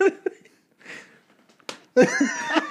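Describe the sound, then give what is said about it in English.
A single sharp slap of a hand against a knee rings out, surrounded by bursts of laughter and giggling. “Audible knee slap.”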